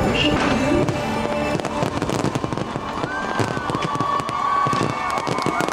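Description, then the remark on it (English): Dense, continuous crackling and popping of fireworks from the final presentation of the Wishes fireworks show, with a busy crowd murmuring and cheering underneath and a few rising whistles cutting through. “People are already cheering.”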